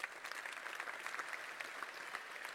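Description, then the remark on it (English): An audience applauds for the Lord at a preacher's call, many hands clapping at once in a dense, continuous patter that holds at an even level throughout, with no voices standing out. “Come on, give the Lord a clap, man.”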